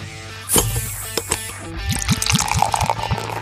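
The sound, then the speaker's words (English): Beer pours into a glass, starting with a splashy gush and settling into a steady glug whose pitch rises as the glass fills. No one speaks. “Pour another round and drink with us as we explore the stories behind your favorite beers and breweries.”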